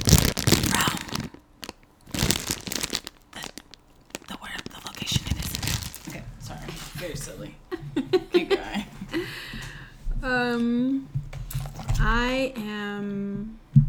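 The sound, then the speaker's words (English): Loud crinkling of a plastic bag in irregular rustling bursts for several seconds, followed by softer crackles and a voice making drawn-out, high-pitched vocal sounds. “ASMR in this plastic bag.”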